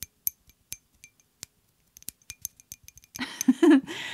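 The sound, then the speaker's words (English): Glass straws clink together in a scattered series of sharp, bright ticks with a ringing tone while a cocktail is being made with ice, followed by a louder burst of rustling and knocking toward the end. No one speaks. “I've got some ice. I've also got some glass straws.”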